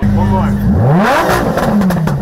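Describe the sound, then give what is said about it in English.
More than 200 exotic sports and luxury cars rev their engines loudly at a charity event for children, one roaring pitch sweeping sharply upward and then easing back down over a steady rumble of other idling engines. “More than 200 exotic sports and luxury cars revving their engines.”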